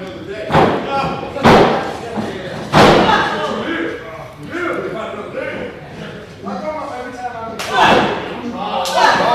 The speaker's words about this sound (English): Working the body now from Randy. Yeah, a couple good gut punches right there.